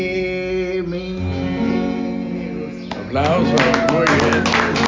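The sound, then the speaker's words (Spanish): A song with sustained, ringing tones is winding down at a show in Havana when a burst of audience applause breaks out, dense clapping filling the final couple of seconds as the last notes fade beneath it. “Aplausos, muy bien.”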